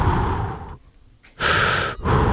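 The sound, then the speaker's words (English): A voice imitates heavy, mechanical respirator breathing: loud, hissing breaths alternating in and out with short pauses between, no talking. “I can't do Darth Vader. You know. It's just heavy breathing.”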